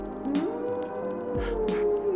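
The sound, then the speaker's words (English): A long, wavering howl from five or six wolves outside the door rises and then holds a steady pitch for a couple of seconds, moderately loud, with a faint rumble underneath and no talking. “Did you hear that? Oh no. Victoria, the wolves are at the door.”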